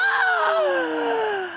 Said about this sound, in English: Gasp.